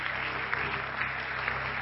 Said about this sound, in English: Praise the Lord, everybody. Why don't we give the Lord a hand clap of praise today?